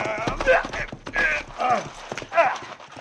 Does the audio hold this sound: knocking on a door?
no